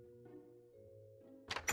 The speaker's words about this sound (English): Now shut the door and leave!